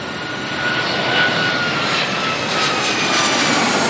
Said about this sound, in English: Flight request, our flight attendants be seated at this time. We're landing in about 1 minute. Thank you.